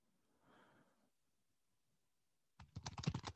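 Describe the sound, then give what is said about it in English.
A soft breathy exhale, a moment of quiet, then a rapid burst of computer keyboard typing, with dense clattering key clicks filling the last second. “Oh, I hear you typing.”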